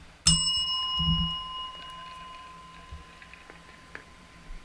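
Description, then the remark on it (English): A single bright bell strike rings out near the start, its clear metallic tone with layered overtones lingering and slowly fading over several seconds amid faint background noise. “Hit the bell.”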